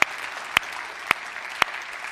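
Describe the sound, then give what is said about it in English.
A church audience at New Life applauds steadily after hearing that 10 people committed their lives to Jesus the week before, a dense wash of clapping with a few sharper, louder claps standing out at regular intervals. No one speaks over it. “But this is the number I think you want to clap on, and that's this.”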